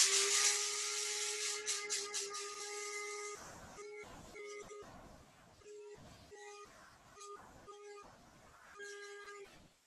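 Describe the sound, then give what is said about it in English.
An electric coffee grinder whirs loudly with a steady high-pitched motor whine for a few seconds, then runs in a series of short, stop-start pulses as whole spices are ground: coriander, cumin, fennel and fenugreek seeds, a couple of cardamom pods and one dry chili. “And I'm just going to grind it down in this coffee grinder.”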